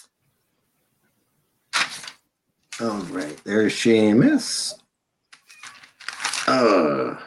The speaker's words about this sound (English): I'm on paper, so pardon me as I flip.